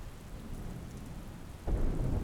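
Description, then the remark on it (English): Steady rain patters down with a low, rumbling thunder underneath, swelling into a louder, deeper roll near the end. No voices are present. “You will hear behind you the sound of thunder and lightning. But you are not afraid. and you can hear rain.”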